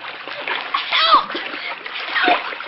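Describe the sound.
Heavy, churning splashes of someone falling into a river, loud and close, with water thrashing continuously for a few seconds and faint voice-like cries mixed into the rushing noise.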